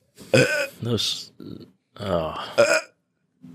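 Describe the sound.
A few loud burps in quick succession, deep and throaty with a rumbling, voiced quality, separated by short pauses; empty-stomach burps from a man doing 48-hour fasts.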